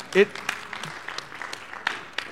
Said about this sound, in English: Yeah, you clap.